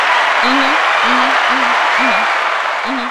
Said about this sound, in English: listen, hand clap of praise for you.